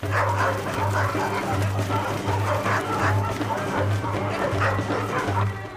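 Dogs bark in a steady, overlapping stream of loud yips and woofs, with higher whimpering cries mixed in, continuous throughout.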